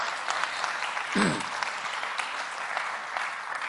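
A church audience claps their hands to the Lord in praise, steadily, a dense, continuous wash of many hands at even loudness, with a brief voice rising out of the applause partway through.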